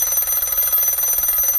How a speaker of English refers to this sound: Hey, the phone's ringing.